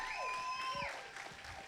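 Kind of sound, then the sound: crowd, audience applause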